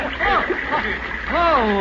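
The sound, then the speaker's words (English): A horse, being ridden across a river along a sandbar by a big rock, splashes heavily through the water and bucks, unwilling to go in, in a steady wash of noise, while excited voices shout and call out over the commotion. “Homeless doesn't like the water.”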